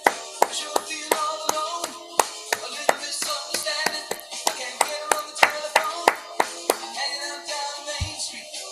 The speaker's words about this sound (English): You're not very good at keeping time into clapping, by the way. What do you mean? Well, you're clapping along with the music, but it was like so off.